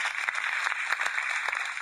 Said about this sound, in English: a round of applause for winning the quiz? Yeah, I won the quiz.